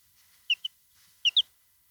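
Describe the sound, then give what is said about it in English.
High, thin chirps from a baby chick named Buffalo, two pairs of short peeps, fairly clear against a quiet background. “Oh, did you hear that chirp?”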